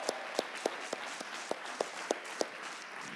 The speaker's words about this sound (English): My parents are here, and they just celebrated their 33rd wedding anniversary. Can we give some applause? 33 years, right?